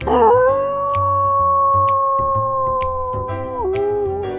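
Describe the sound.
A child imitates a dog's howl while trying to set a record for acting like a dog for the longest time, holding one long, steady note for several seconds before it dips at the end, loud over a soft rhythmic background beat.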